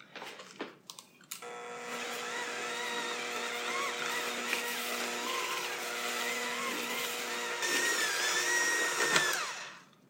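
A hand mixer whirs steadily for several seconds, its beaters chopping up cold butter that was not softened, the motor tone shifting and straining slightly as they churn through it, then cuts off near the end.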